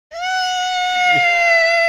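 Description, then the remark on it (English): A voice imitates the shriek of metal being sawed during road work done in the middle of the night outside a window: one loud, sustained, high-pitched whine that holds a steady pitch for about two seconds, with no words. “like, it's like they're sawing metal in a way where there's nowhere I can go.”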